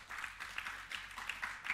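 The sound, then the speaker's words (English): A crowd applauds in a show-of-hands poll on whether they like Valentine's Day, with dense, overlapping hand claps, a steady patter of many hands, fairly quiet and without voices. “More ladies were clapping on the first one.”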